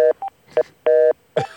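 A series of electronic tones from a beeping phone line: short and longer steady beeps in a stuttering pattern, several stacked tones like keypad dialing, ending in a brief harsher burst. No voices.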